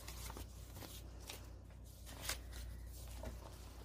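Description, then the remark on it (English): Pages of a Victorian-style paper junk journal being flipped, a handful of quick, crisp rustles and swishes at irregular intervals over a faint, steady low hum, with no one speaking. “Flip Through of a Victorian Style Junk Journal”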